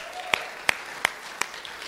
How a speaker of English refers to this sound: So thank you to everyone that cooked. Thank you to everyone that helped. That just, I think, deserves another round of applause.